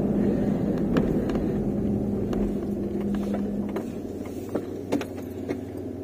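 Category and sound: vehicle, car driving slowly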